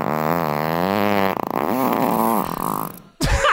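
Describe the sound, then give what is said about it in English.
A long, loud, buzzing fart, played in a guess-whose-gas game, that wavers in pitch for about three seconds, breaking into a sputter before a brief, wet final burst. No voices. “We're playing Guess Who's Gas.”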